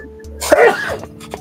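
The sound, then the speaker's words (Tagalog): A single sharp sneeze bursts out, a quick intake followed by an explosive release, over a faint low hum. “Bless you.”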